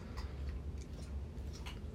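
A dog chews and munches with soft, irregular clicking bites, about six quick crunches over two seconds, fairly quiet above a low steady background hum. No one speaks.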